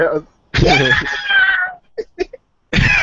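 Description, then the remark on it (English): A loud, high-pitched shriek from a person, held for over a second and sliding downward, then a few short breathy sounds before another shriek starts. “The shrieks were perfect.”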